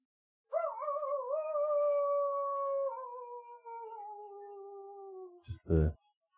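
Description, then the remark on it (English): One long, sustained howl that wavers at first, then glides slowly downward in pitch for about five seconds, followed by a short, harsh burst of noise at the end. “Just the howl.”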